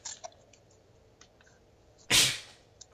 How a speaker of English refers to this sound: Holy moly. excuse you. Me. It was a sneeze, right? It was yeah. a sneeze. It came out of nowhere. Sneeze.